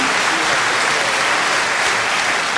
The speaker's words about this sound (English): Just before I go, let's just have one round of applause for Bix, okay? Wherever you are, Bix, we love you.